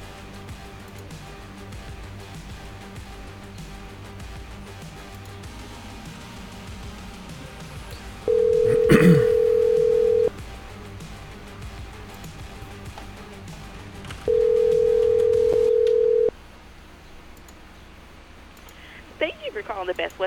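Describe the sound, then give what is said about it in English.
Two long ringback tones of an outgoing phone call to Washington, each lasting about two seconds with a pause of roughly four seconds between them, clear and steady over faint room noise. “We call Washington.”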